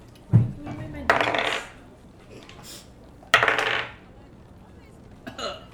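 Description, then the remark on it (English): Dice clatter and tumble across a hard tabletop twice for a persuasion check with advantage, each roll a sharp rattling burst that settles within about half a second, with a soft thump and faint clicks between. “Roll me a persuasion check with advantage, because that's pretty sweet.”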